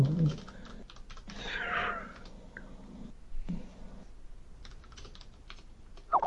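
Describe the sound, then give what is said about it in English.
Rapid, irregular clicking of computer keyboard keys as a player drives in a video game, moderately loud, continuing throughout with occasional brief louder clatters and faint background noise. “Yeah, it sounds like you're doing a lot of work if you're driving with the keyboard.”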